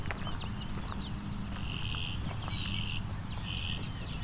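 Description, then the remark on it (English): A clay-colored sparrow sings three flat, insect-like buzzes in steady succession over a low outdoor rumble, with another bird's quick whistled notes at the start. “Buzz, buzz, buzz. That's clay-colored sparrow.”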